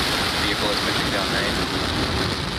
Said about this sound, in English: All systems are go for launch of Falcon 9 with GPS-3 space vehicle number 3. 10, 9, 8, 7, 6, 5, 4, 3, 2, 1, 0. Ignition. Liftoff. Go Falcon, go GPS.